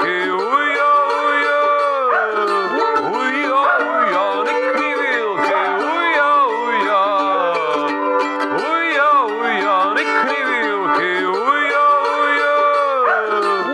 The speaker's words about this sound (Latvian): Tikko ienāca man prātā tāda doma, mēs taču varētu arī svinīgi atklāt pilnīgi konkursu dziedošajiem suņiem.